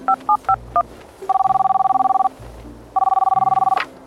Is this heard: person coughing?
no